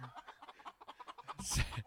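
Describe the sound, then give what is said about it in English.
A chicken clucks in a quick, steady run of short pulses, ending in a louder, rougher squawk-like burst near the end. “Oh, Jewish chicken.”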